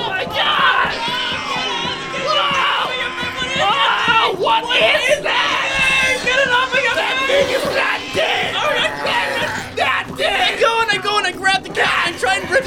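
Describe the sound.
Several people scream and yell in terror at once as a cat leaps at someone's face, loud, their overlapping frantic shrieks running continuously from start to finish.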